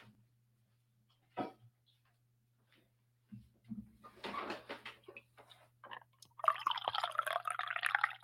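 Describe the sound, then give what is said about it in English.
A few light clinks and handling sounds, then a steady stream of coffee pouring into a cup for about two seconds, its gurgle rising as it fills, over a faint low hum. “There you go for all you sick freaks out there who wake up to hear me pour my coffee in my cup.”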